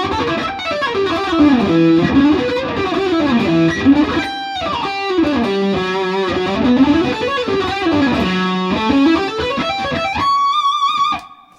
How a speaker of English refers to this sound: So there's maybe a few hammer-ons and pull-offs in there, I think.